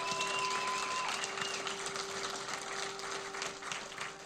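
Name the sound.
audience applauding and cheering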